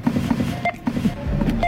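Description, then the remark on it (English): A quick series of short electronic beeps, several bright pitched tones chirping in an uneven rhythm over a low background hum, with no one talking. “You like those beeps? I got them ready.”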